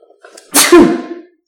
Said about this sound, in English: Bless you. Bless you